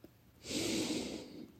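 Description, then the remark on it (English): A single long, deep inhale drawn through the nose, a soft airy hiss that swells for about a second and then tapers off, fairly quiet, with no one speaking. “Breathing in even deeper.”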